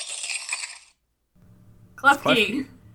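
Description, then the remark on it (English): Klefki's Pokémon cry: a bright, jangling burst of metallic clinks like shaken keys, a short silence, then a low hum under a brief, warbling, voice-like electronic call. “It's Klefki!”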